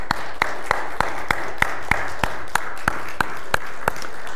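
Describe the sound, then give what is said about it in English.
An audience applauds in appreciation of the church elders' service, a dense steady wash of clapping with a series of sharp, evenly spaced claps standing out on top. It carries on at an even level throughout, with no talking. “Can we just show some appreciation, maybe a round of applause for their service?”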